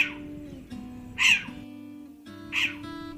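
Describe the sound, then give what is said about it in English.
A short-eared owl gives three sharp, yelping puppy-like calls, spaced about a second apart, clear over a steady low background hum. “Here are some of the short ears' puppy-like and other vocalizations. It's today's featured feathered friend, Osseo flammeus, the short-eared owl.”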